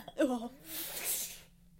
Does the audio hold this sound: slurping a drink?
no